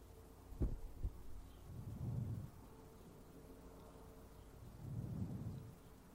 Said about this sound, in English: Okay. Really hope you guys could hear the helicopter flying there over. There was a helicopter in the background.